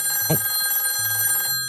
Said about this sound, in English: Oh. It's like the phone's ringing here. Do you want me to answer it?